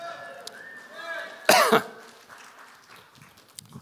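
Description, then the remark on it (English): A man gives one sharp, loud cough, a short harsh burst standing out against a faint, murmuring background. “Come on, you're not cheering, so I'm coughing.”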